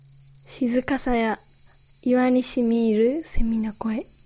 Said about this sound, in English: the 17th century poet Matsuo Basho described a scene at a secluded and very peaceful mountain temple high in the hills of northern Japan. For the poet, the sound of cicadas actually seems to accentuate the peacefulness of the place.